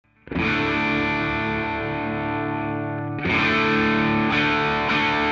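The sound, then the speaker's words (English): An electric guitar played through a Rat distortion pedal with the gain set low rings out a sustained chord, then strikes a fresh chord that decays with a couple of lighter re-picks. Steady, fairly loud, with no talking. “We'll start with the rat, gain down low again.”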